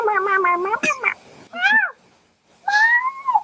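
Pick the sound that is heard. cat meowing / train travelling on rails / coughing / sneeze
cat meowing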